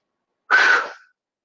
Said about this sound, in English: Forgive me for my cough. It has not been easy for some days, but I'm just managing.